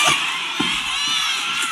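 A large church audience screams and cheers continuously, a loud, dense wall of high-pitched shouting with no clear words that stays steady for the whole short stretch.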